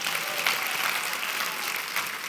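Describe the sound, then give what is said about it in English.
A crowd applauds steadily, a dense wash of many hands clapping at once, sustained and fairly loud throughout without any voices standing out. “I think that's a great moment to clap if you ask me, so.”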